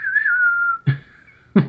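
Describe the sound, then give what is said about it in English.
A breathy, flute-like doorbell tone that resembles a South American flute sting holds one wavering mid-high note for nearly a second, then two short, sharp bursts break in, with the note carrying on faintly between them. “Which, the doorbell sounds suspiciously like a South American flute sting.”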